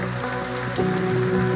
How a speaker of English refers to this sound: I hear 50 people clapping here.